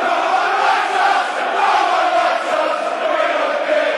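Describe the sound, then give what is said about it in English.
A large football stadium crowd roars and chants steadily for the whole stretch as darkness descends, a loud, dense wall of massed voices with swelling surges and no single speaker standing out. “As the darkness descends, the crowd starts to get involved.”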